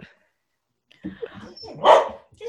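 A dog lets out one loud bark after a second of low grumbling and shuffling noises, then things quiet down again.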